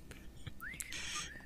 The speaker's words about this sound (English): I can't whistle. That was all of us trying to whistle.